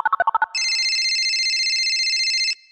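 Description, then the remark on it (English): A quick burst of six short electronic beeps leads into a loud, steady two-second telephone ring tone that cuts off abruptly, heard alone with no voices. “And now it's time to phone a friend.”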